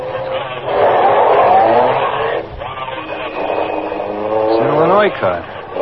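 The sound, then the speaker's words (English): A car engine revs and accelerates away from a traffic light as it changes, its pitch climbing steadily before a final sharp rise, loud, with muffled voices faintly underneath. “When the light changes, take off behind them.”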